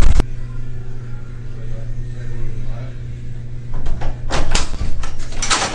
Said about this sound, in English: Door's open.